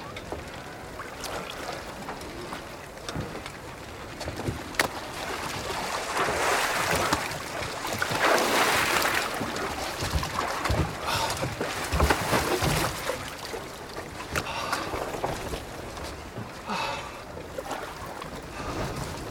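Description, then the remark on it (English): A small boat going out fishing moves through water, with steady sloshing and splashing against the hull, occasional knocks and gusts of wind, continuous throughout. “You can't just climb into my boat.”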